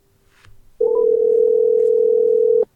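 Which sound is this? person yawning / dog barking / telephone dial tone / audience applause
telephone dial tone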